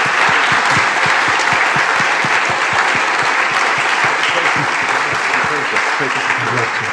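A room full of people applauds steadily, dense overlapping claps holding at a loud, even level for several seconds without letting up.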